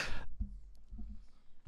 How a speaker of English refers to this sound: I have to sneeze loudly. What was that? If I don't sneeze aggressively like that, I do hurt my back almost every time.